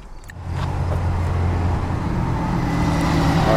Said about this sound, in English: Alright. Bus to go by. It's loud here.